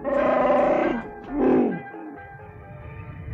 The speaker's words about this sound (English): Han's co-pilot, Chewbacca, a shaggy 8-foot Wookiee, roared his agreement.